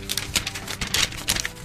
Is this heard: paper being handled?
yes